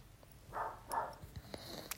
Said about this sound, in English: Well, how does dog be wailing, bro? She's so small, voice so big, like.